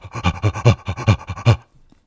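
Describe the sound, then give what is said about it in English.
A crouching man breathes into a tube: rhythmic, guttural, gorilla-like breathing, about eight quick heavy huffs in a steady pulse, fairly loud with a hollow, tube-like quality reverberating through glass, then it stops abruptly. “He started doing this sort of rhythmic, guttural, gorilla-esque breathing through the tube.”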